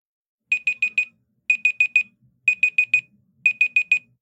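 A Google smart speaker timer, set for 2 minutes, beeps in quick bursts of four high electronic tones, repeating four times about once a second, clear with no one talking.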